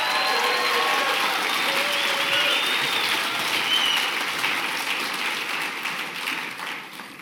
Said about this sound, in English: You're deserving of honor. All of our children's workers, come on, can we give a louder round of applause?